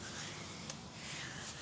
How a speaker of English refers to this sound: You hear that rustling of the leaves. I'm just sitting here looking at it. It's funny how you can have this beautiful blooming green tree in autumn, and you just see like sections of branches that have leaves that are ready to turn into fall.